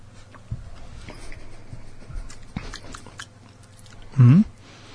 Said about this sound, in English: So drink it and see what you think. All right, here we go. I'm gonna take a sip.